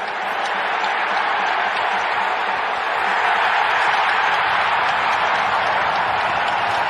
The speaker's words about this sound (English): Matter of fact, Ray, I don't remember the last time I've seen a scrap like that in an NHL game. and the crowd is going crazy.